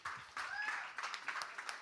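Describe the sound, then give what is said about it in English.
An audience breaks into a round of applause, a dense, steady wash of many hands clapping at moderate loudness, with a faint whistle-like tone briefly rising above it. “So guys, let's give them a round of applause.”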